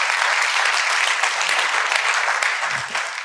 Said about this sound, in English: A round of applause. Pretty good. Thank you.